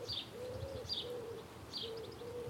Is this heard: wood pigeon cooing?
yes